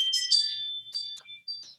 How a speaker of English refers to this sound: Sorry, that was the Ring doorbell.